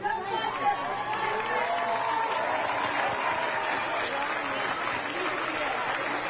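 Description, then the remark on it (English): A crowd applauds steadily for several seconds, dense clapping mixed with a few cheers and scattered voices, reacting loudly and continuously. “We need to get my sister a round of applause.”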